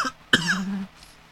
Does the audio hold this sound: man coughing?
yes